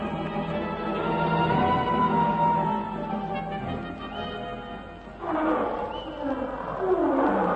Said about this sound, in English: It was a lion, wasn't it? Yes. Wait till I reload my rifle. Do you think it was close to us? No, but it was ahead.